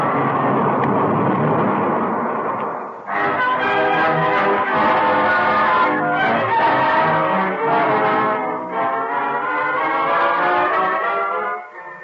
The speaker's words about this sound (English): As the two towering walls of flame met, the explosion threw blazing oil high into the air and rocked the earth for miles around.